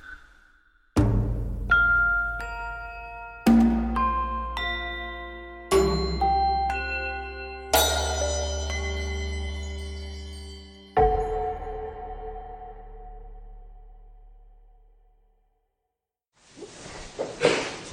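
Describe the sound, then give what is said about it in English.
A new bell is struck repeatedly, about six times at uneven intervals, each strike ringing out with rich overtones and a long decay that fades into silence before a burst of noise at the end. “Doesn't the new bell sound nice?”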